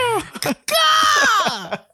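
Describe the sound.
A person imitates an eagle's cry: a loud, shrill screech held for about a second and slowly falling in pitch, after a few short rising vocal yelps, with no other speech.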